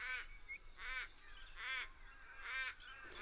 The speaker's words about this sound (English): This is a place that's kind of a favorite for the galah parrots that we're hearing just now. We're also in there hearing the mournful voice of the Australian raven.